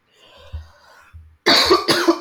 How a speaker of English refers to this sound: I have to edit out these fucking coughs. God damn.